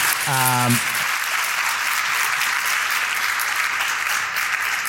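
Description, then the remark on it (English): A crowd applauds a panel with dense, steady clapping that holds at an even, loud level for about five seconds, after a brief voice at the very start. “So with that, I want a big round of applause for our amazing panel.”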